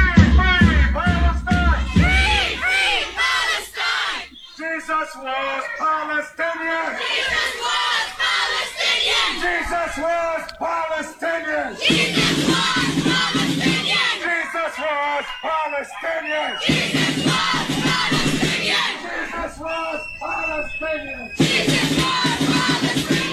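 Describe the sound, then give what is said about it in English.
A large crowd of pro-Palestinian protesters shouts and chants loudly in unison inside a shopping mall in Canada, aimed at children waiting in line to sit on Santa's knee. Voices surge in rhythmic bursts with brief pauses between chants, sustained throughout. “You know, they're shouting and screaming to these children who are waiting in line to sit on Santa's knee inside the mall.”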